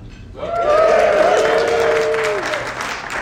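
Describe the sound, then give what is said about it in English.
An audience bursts into loud applause in the room at a recorded live event after a brief quiet moment, with a few voices whooping over the dense clapping, which holds steady for about three seconds. “That's applause in the room from the recording, proof that it happened.”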